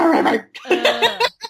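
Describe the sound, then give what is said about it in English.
A person makes a few short, strained, growly vocal yaps, imitating a very angry tiny dog snarling, with brief gaps between the bursts. “I sound like a very angry tiny dog.”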